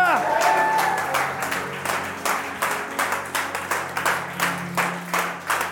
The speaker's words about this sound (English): It says, come everyone, clap your hands. How many of you know how to clap your hands? Ah. Clapping hands. Let's do it.